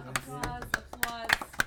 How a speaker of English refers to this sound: Applause.